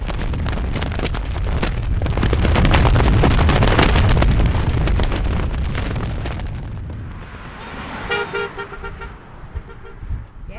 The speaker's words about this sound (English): Well, being in the desert. It's a great sound. Yeah. The violence of the flag.